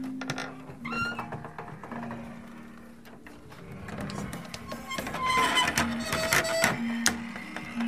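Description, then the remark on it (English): A kitchen door, salvaged from a torn-down restaurant and still on its original hinges, creaks open slowly with a drawn-out, groaning squeal whose pitch shifts and wavers over several seconds, mixed with small clicks and rattles. No one speaks. “This door was from my childhood favorite restaurant, about 5 minutes from where I grew up, and it still has the same creak.”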